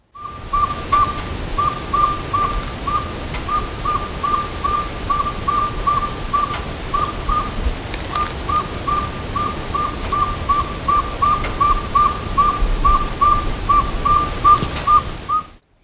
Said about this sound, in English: now is the time that the saw-whet owls will be nesting